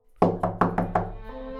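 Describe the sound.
A voice imitates knocking on the front door of a house, five quick, evenly spaced knocks, moderately loud, followed by a short trailing hum.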